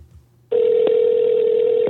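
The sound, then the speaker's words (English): After a short near-silent moment, a telephone line tone cuts in abruptly as someone is being called, and holds as one steady, loud electronic pitch until the end, with no one speaking. “I'm going to call up someone to get them on the phone.”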